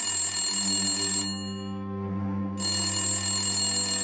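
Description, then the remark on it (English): A telephone bell rings loudly in a bedroom on a Friday evening, a harsh, sustained metallic jangle that briefly thins out midway before ringing fully again; no one speaks. “was in the bedroom taking a quick nap when his phone rang.”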